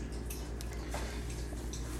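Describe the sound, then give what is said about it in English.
A pet named Rocky lapping water from a bowl, a steady run of quick, wet clicking laps, with no one talking. “Hey, Rocky, can you drink your water any more louder, bro?”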